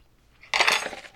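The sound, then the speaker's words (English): A metal fork is knocked off and clatters, a sudden bright burst of metallic rattling that rings for about half a second before fading, with no voices. “I just knocked my life fork off.”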